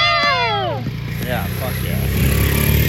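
A motorcycle engine rumbles outside as it passes by, opening with a high whining pitch that slides downward, then settling into a low, sputtering growl that grows slightly louder toward the end.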